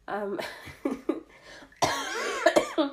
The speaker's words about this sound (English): Great. Every time I laugh, I cough. I swear, coughs always coming when you're laughing.